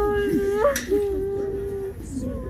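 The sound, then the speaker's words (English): Soldiers' families and loved ones weep at a funeral for soldiers killed by the Russian invading army, at the Saints Peter and Paul Garrison Church in Lviv: a voice wails in long, wavering high-pitched cries, breaking and sliding in pitch, with a steady low background hum beneath. “As their caskets passed the crowds on the way into the church, their loved ones wept for those whom they lost to Putin's invading army.”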